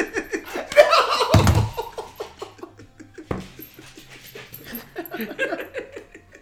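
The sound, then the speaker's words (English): A dog named Frankie pants rapidly while humping a person's arm, its quick rhythmic breaths broken by high whimpers, with people laughing in the background. “Now my dog's humping my arm.”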